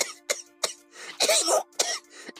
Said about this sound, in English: She downed the liquid in a few gulps. Her head popped up, gasping as it burned her throat. She broke out into a harsh, racking cough.